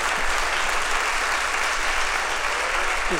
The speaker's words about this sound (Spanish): Si le va un aplauso al Señor, dáselo grande, dáselo fuerte.